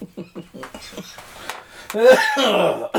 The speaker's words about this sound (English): Why am I smoking? Why am I coughing? I don't smoke anymore.